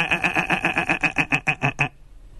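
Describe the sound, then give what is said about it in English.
A person imitates a sheep with a loud, wavering bleat, a quivering "baa" that pulses rapidly for about two seconds before cutting off abruptly. “And all the sheep went...”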